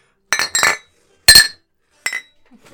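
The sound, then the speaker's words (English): Glasses clink together in a toast, four bright ringing strikes in uneven succession, fairly loud, each with a short shimmering decay, the first two coming in quick succession. “Gratuitous clinking.”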